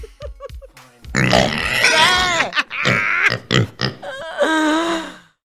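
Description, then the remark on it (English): Pigs grunt and oink: a few quick snorts open, then a loud, continuous stretch of squealing, warbling oinks from several animals overlapping, with short breaks near the end. “Look at all these pigs!”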